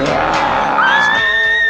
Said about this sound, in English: The moon is full for a third night, and Tony attacks three students this time. The third one is a bearded man, but still screams with the voice of a female student.